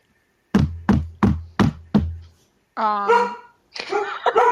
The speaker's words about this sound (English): And as you're waking up and you're getting this hunch, you hear a knocking on the door.